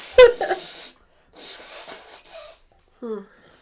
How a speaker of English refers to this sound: I'm glad I gave you one of my ski things for you to blow your nose in.